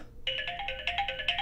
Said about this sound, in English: It's one of my sisters, and I thought that I had turned my phone off. I had not.